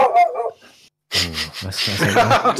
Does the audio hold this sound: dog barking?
yes